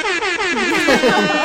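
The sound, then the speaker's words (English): A loud, blaring air horn blast sounds for about a second and a half, its brassy, layered tone wavering slightly as it holds steady without any talking. “Air horn. Because I have to use it.”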